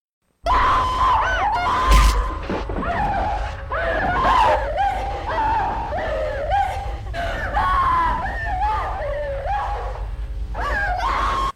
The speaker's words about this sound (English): Okay, we are about to insert 15 minutes of Laura Dern screaming right here.